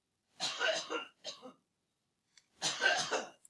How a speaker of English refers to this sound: I'm going to cough for a while.